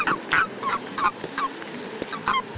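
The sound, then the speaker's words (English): Toads being put into a bucket give a rapid series of short, squeaky chirps, about eight in quick, uneven succession, moderately loud and without any voices. “They make this funny squeaking noise when you put them in your bucket.”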